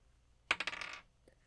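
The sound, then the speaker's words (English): A die with a smaller die inside clatters onto a table and rolls, a quick burst of bright rattling clicks that fades over half a second, then one faint final tick. “I love this dice so much. She's beautiful. She has a little baby dice in her.”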